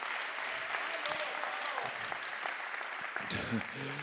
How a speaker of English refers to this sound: Oh, somebody clap your hands.